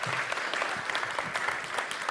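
An audience claps steadily for the speaker's wife, a dense wash of many hands applauding at moderate volume, sustained and even with no pauses and no voices standing out.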